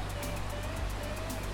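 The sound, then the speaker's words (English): Steady, continuous rush of Croydon Brook flowing under a mix of dark rain clouds and bright blue sky, a dense even wash of water noise over a low rumble, with a faint thin tone threading through and no one talking. “You can hear the birds, the water, and there's a mixture of dark brooding clouds that seem like they're carrying a lot of rain with bright blue sky.”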